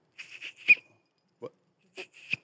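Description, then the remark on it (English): A small handheld whistle, made by students in a high school CNC machining class, is blown in a few short, sputtery toots, followed by a pause, a soft breathy puff, and two more brief shrill blasts. No one speaks. “But in addition to that, programs like Project Lead the Way, which is pre-engineering, and we have a CNC machining class there at the high school, and we make whistles, and they work.”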